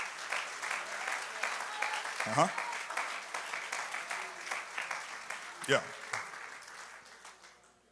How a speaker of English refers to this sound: Let's just take a moment, clap our hands unto the Lord and magnify him.